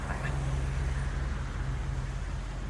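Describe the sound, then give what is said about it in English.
A cab's engine rumbles as it pulls up, with a steady low hum and a constant wash of road noise, holding at an even level throughout with no clear speech. “Just then, combat cab pulls up.”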